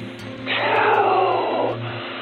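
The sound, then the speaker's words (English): A deep-throated growl swells up and rumbles harshly for just over a second before fading, set against a steady low hum. “And then the sound that I was so sure wasn't breathing became a deep-throated growl that almost made me knock my headset off.”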